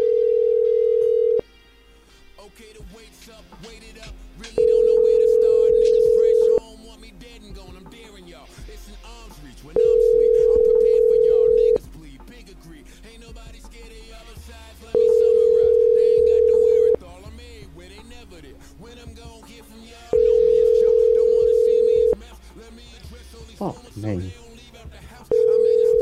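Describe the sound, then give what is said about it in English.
A phone call to a cell phone rings out unanswered, five long steady ringback tones spaced evenly a few seconds apart, with quieter background voices and noise murmuring underneath. “Try her cell.”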